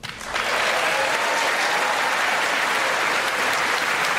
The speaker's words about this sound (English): Another applause line. There's Alexandria Ocasio-Cortez. Still works.